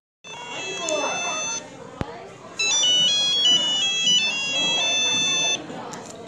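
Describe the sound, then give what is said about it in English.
A phone rings with a bright electronic melody of stepping high tones, sounding in two fairly loud bursts separated by a short pause and a sharp click, over a murmur of background noise. “what's that? Your phone?”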